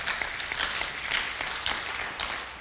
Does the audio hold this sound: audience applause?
yes